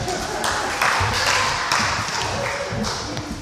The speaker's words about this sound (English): Okay, give them a round of applause.